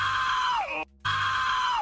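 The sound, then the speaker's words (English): Two loud, sustained screams from a person, back to back with a brief silent gap between them, each holding a high pitch before sliding downward at the end. “I'd probably walk in screaming or something.”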